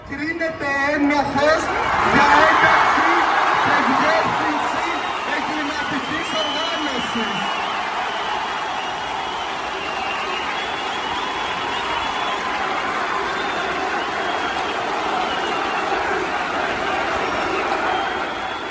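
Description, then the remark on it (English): A large crowd in Greece reacts to a court verdict declaring a political party a criminal organization, erupting in loud cheering and shouting, many voices overlapping, then settling into a sustained, excited roar that continues steadily to the end. “The crowd's reaction is electric.”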